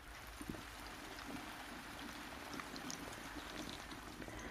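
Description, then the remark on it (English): Water pours onto a person's hair to rinse off a clarifying shampoo, a steady, continuous splashing rush, fairly soft, running unbroken from start to finish with no voices. “And then add water.”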